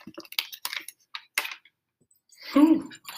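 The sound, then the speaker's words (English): Crinkly plastic packaging of tart and tangy pickles is handled with a series of sharp clicks and rustles, followed by a short, fairly loud gush of pickle juice being poured out of the package. “I got to pour the juice out first.”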